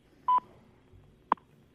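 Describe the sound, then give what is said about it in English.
Time signal tones from the U.S. Naval Observatory Master Clock, marking Eastern Standard Time: a short, loud, steady beep, then after about a second of near silence a second, briefer tick-like tone, with no voices. “U.S. Naval Observatory Master Clock at the tone, Eastern Standard Time, 20 hours, 31 minutes, 30 seconds.”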